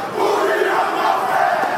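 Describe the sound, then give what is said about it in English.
A group of voices roars a loud, aggressive war chant in unison, a dense, sustained wall of shouting that holds steady for the whole short moment. “And the song is more like a chant, and it's very aggressive and loud.”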